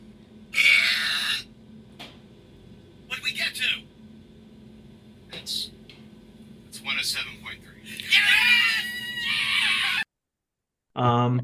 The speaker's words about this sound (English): Virginia woman breaks world record for loudest burp. And what we're going to try to do here, see if it'll work. We'll put in one of her burps for you. Behold.